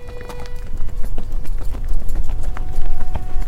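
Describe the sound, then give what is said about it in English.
A young horse's hooves clip-clop at a steady walking pace as its rider rides off at about 11 o'clock, each hoof strike sharp and distinct, moderately loud over a low rumble, with no one speaking. “Bidding adieu to my friends, I mounted my horse and rode off.”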